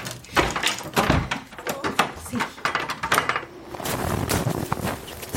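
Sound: door opening and closing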